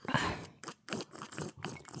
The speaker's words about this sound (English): Because we haven't had our coffee. We've had two sips of it. Oh, my God. We need another. Let's chug it. A little ASMR for you this morning.